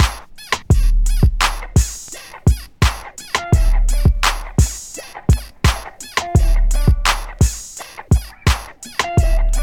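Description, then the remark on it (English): Squeaking bed springs, the original sample used in a music track, repeat in a quick, steady rhythm, each loud creak carrying a slightly pitched, whiny tone over a low thump, with no one talking. “So this is the bed squeak sound.”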